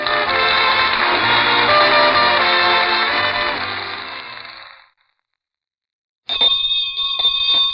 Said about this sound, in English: Well, well, the school bell.